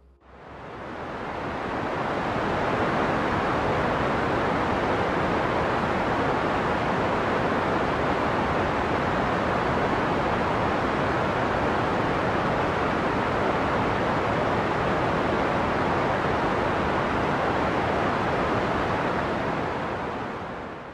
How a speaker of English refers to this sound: When I'm in this situation and I'm struggling to sleep, I use pink noise. What does pink noise sound like? I'm going to give you 30 seconds now for you to hear.